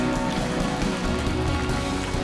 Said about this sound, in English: Keep on clapping.